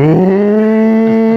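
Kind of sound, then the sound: animal, cows mooing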